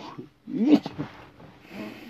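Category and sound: human body sound, sneeze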